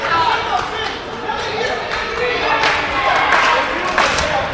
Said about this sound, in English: I mean, starting off, the crowd's already getting into it. Yeah, they are, man. The very first match of Combat 1. This is hype.